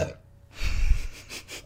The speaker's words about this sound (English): That's not coming out. You burped in the last episode I edited, and you told me to take it out, like, and I please did. Take it out. But I'm not taking it out.